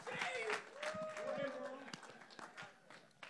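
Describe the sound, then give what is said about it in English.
A crowd at a church service applauds with steady, dense clapping, mixed with shouts and cheering voices that rise over it before the clapping gradually thins out, as a speaker is welcomed to deliver a seven-minute message on love. “Give a round of applause to the handsome, the magnanimous.”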